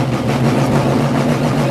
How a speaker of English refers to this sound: It's actually not a Camaro. But you can hear what the power this car has. God, it's crazy.